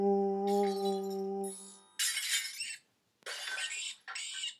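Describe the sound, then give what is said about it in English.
A steady, low, horn-like tone holds for a moment before glass bottles, knocked off a shelf by a rat, crash down in three loud, bright shattering bursts, each followed by tinkling debris, with brief pauses between. “Yeah, that rat's trying to knock down the bottles off the shelf.”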